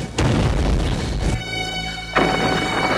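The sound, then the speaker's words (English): Two heavy explosion booms during an all-out air attack in Israel as thousands of planes soar overhead: a loud, rumbling blast that rolls on for about a second, then a steady droning hum, then a second powerful boom. No one speaks. “I am standing in the middle of an all-out attack.”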